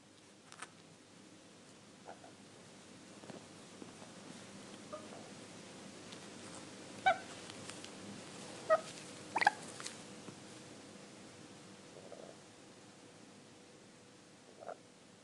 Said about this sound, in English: This is … reporting from Brisbane. We have birds.